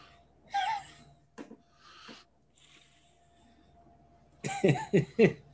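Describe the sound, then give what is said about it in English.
A voice imitates snoring: a few scattered breathy snorts, then a loud run of three or four rasping, rhythmic snore sounds at the end. “As you get closer, you notice that her praying sounds an awful lot like snoring.”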